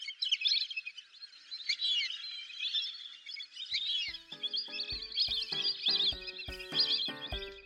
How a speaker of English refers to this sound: So I was thinking it might be best to let the ducks do the quacking.